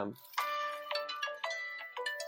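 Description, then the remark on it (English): A bright electronic phone chime plays a rising, bell-like melody of repeated tones, about six notes in a steady rhythm, moderately loud, with no talking over it. “I didn't know my phone made this sound.”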